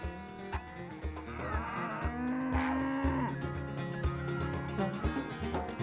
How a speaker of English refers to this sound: hanging out with this curious herd of Black Angus cows